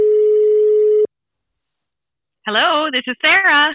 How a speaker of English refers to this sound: Who are we calling today? Ooh, this will be exciting. The phone is ringing.